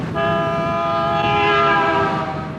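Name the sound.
car horn honking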